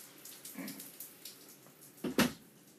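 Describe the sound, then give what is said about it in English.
Steady rain hisses through an open doorway, a soft, continuous wash of water with a brief louder splash near the end. No one speaks. “Well, it's raining sexy outside right now.”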